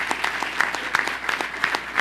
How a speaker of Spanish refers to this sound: Así que démosle un fuerte aplauso a este equipo tremendo.